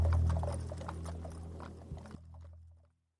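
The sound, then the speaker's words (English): The hooves of a horse pulling a cart clip-clop on dirt in a steady, muffled rhythm over a low rumbling drone, the sound easing off and fading to silence near the end. “She lets the steady movement of the cart and the rhythmic pounding of the horse's hooves on the dirt lull her back to sleep.”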